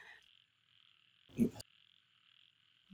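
A single deep, throaty bullfrog croak sounds about midway, fairly loud, over a steady high-pitched chorus of frogs or insects droning in the background.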